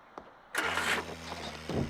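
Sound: car engine starting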